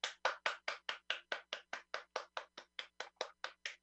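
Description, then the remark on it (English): One person gives a golf clap alone in a steady, even rhythm, about twenty crisp, light claps in quick succession with no voices. “There's one golf clap I can hear.”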